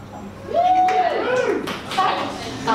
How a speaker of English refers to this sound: So can I get a cheer or a clap or something from everyone in the audience who has seen the classic Christmas film, A Christmas Story?